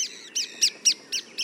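A treeswift gives a rapid series of six sharp, high chattering calls, evenly spaced, with no voices present.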